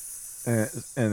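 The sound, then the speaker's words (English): A voice imitates a rattlesnake's hiss: a steady, breathy hiss runs throughout, broken by two short, loud voiced bursts, with no words. “A rattler appears. Yeah, a big old pile of snake. That's the sound it makes. It goes.”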